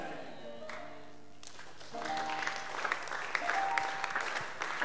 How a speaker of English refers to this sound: Also, their clapping is very weak.